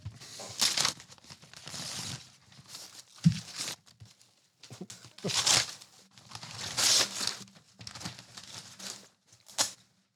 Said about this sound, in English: She has now light blue Broncos and green Bronco wrapping paper. I like it. So there you go. Tear it apart.